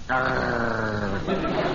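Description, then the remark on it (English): A man growls like an animal in one sustained, rough, throaty rumble, lasting a couple of seconds with a slight shift in tone near the end. “stop this growling at people.”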